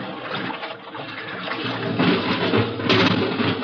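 Water is pumped out of an airlock chamber, rushing and draining steadily in a loud, continuous churning gush that grows slightly stronger toward the end, with no voices.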